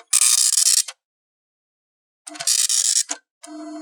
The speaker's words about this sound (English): Oh my God, I've got 40 pages to print! Tired of waiting on a slow serial attached printer?